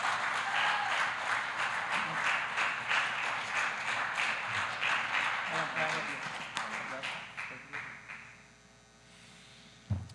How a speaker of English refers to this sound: God, why don't you give him a hand clap of appreciation